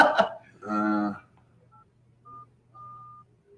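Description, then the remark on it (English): Telephone dialing tones: a brief clatter, a buzzy sustained tone, then a few short, clean electronic beeps at uneven intervals over a faint low hum, moderately quiet. “it's dialing, and let's see if we get Mr. Matt”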